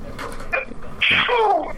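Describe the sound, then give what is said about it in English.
A single sudden sneeze bursts out, loud and sharp with a short voiced tail trailing off, after a moment of quiet background noise. “Bless you. Bless you.”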